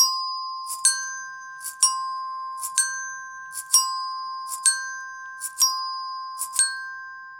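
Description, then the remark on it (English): Resonator bells ring with steady, sustained tones while bean-filled bottle shakers rattle in short bursts about once a second, seven shakes in a steady rhythm, clear with no talking. “You can get egg shakers, or you could simply fill bottles with some beans and they will sound like shakers too. So together with the resonator bells, we could play like that.”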